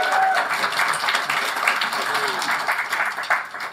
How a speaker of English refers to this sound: So I say we need a round of applause for that.